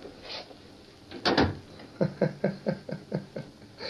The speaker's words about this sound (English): Yes, Master. I go. Close the door.